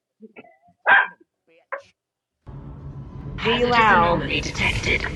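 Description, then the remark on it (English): A few sharp, isolated barks ring out, then after a brief pause dogs break into louder, continuous excited barking and yelping over a rumbling background, with voices mixed in, as someone comes into the house from the grocery store. “That's what they're barking at.”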